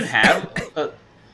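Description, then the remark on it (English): A congested, chesty cough from someone ill with a virus: a heavy first hack followed by two shorter, rougher bursts in quick succession, then quiet. “I'm going to have coughing fits in the middle of this episode at some point, because I'm still severely chest congested.”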